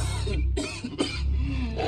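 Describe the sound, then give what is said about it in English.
A loud, harsh cough breaks into a few rough, throaty bursts in quick succession with no talking around it. “The voice coughs loudly.”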